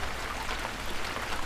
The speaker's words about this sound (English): Rain continuing.